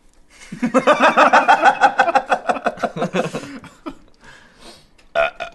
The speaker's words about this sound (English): Good burp.